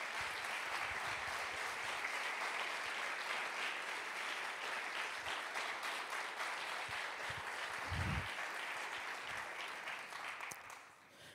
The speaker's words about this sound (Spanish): Esto merece un aplauso a nuestro Señor.